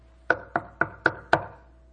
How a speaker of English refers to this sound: Oh, no. I was afraid to roll down that window. He's knocking on the window.